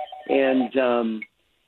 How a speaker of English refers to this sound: And sorry, we've got a phone call there, but terrible timing.